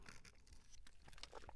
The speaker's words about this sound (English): Sippy sip water, ice water.